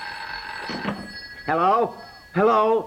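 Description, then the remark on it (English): A telephone rings steadily throughout with a bright, continuous bell tone, while a person speaks over it in two short bursts. “Crawl in and grab the phone. Hurry up. Get the phone.”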